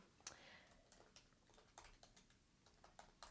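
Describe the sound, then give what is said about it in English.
Quick, irregular keystrokes clatter on a computer keyboard as someone runs a Google search, a steady stream of soft clicks at low volume, with no voices. “I'll cut out the typing.”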